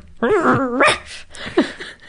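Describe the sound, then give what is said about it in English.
A voice imitates a female pet dog growling and barking in her sleep while dreaming: a wavering, whiny moan followed by a couple of short, muffled woofs, fairly loud. “I love when my dog growls and barks in her dream.”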